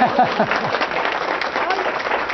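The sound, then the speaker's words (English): An audience at UC Davis breaks into steady, dense applause for a professor who has won the UC Davis Prize for Undergraduate Teaching and Scholarly Achievement, announced by the UC Davis chancellor, many hands clapping at once in a continuous wash of sound, with a voice briefly audible over it at the start. “This is a big, you should all applaud now.”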